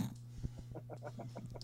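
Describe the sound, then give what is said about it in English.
A voice imitates the snoring and heavy breathing of sleep apnea with a rapid, rattling series of guttural pulses, moderately loud, over a steady low hum. “I mean, it was fun at first, but now it's the heavy breathing. I have sleep apnea.”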